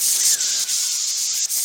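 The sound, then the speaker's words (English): A steady, breathy hiss of voices imitating a snake for a serpentine draft, held for under two seconds with a couple of brief dips, bright and airy with no words spoken. “Why isn't anybody else hissing?”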